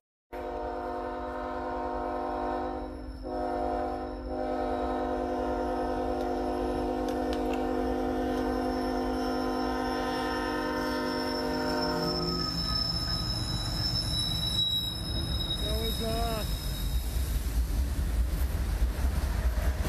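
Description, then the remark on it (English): A train sounds a long, loud, sustained horn, then rushes past at speed without stopping, with a heavy roaring rumble and brief metallic wheel squeals, never slowing. No one speaks. “The train's not stopping.”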